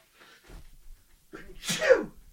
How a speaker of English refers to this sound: I'm going to sneeze here. Hold on.